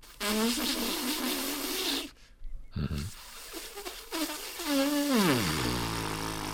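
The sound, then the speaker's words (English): Buzzing lips, like a brass player's mouthpiece buzz, made by lung pressure and the way the lips are held, in two bursts: a wavering, nasal tone for about two seconds, a short pause, then another buzz that rises slightly and slides down in pitch. “The key to it is the combination of pressure from your lungs and then the way you hold your lips, so that whenever you're playing a brass instrument, whatever you're doing is an amplification of buzzing.”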